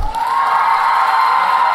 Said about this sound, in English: When I call out your school, clap and cheer and show Mr. Patterson some Baltimore spirit. Edgewood Elementary.